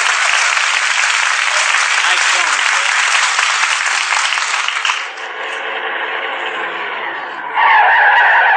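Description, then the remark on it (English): A car's brakes screech loudly as it skids to a stop: a long harsh hiss of tires gives way to a high, wavering squeal that rises sharply again at the end. “Them brakes fixed.”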